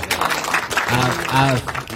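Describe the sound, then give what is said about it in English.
A round of applause from a small crowd, steady clapping throughout with a couple of voices cheering and whooping over it, moderately loud. “First of all, can we just give him a round of applause for working on his own project?”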